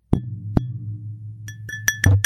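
glass clink

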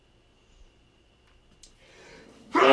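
sneeze

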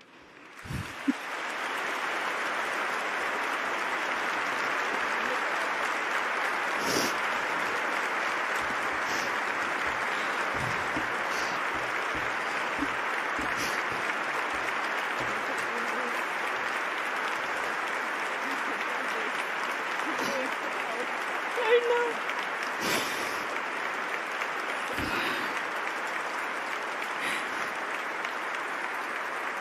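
audience applause

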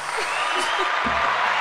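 applause sound effect button

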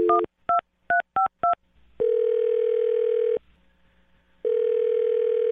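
telephone keypad dialing tones

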